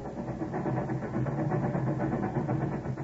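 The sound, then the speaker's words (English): Train wheels roll along the track in a steady, continuous low rumble with a faint mechanical rattle, holding an even loudness throughout with no voices. A train travelling to Chicago at night in the rain, in 1896, in a radio drama. “Ben, do you hear what the train wheels are saying?”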